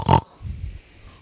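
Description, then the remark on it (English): A voice imitates a pig with a short, loud snorting burst, followed by a few softer, low grunting snuffles trailing off. “She was so bad that instead of clucking, she snorted like a pig.”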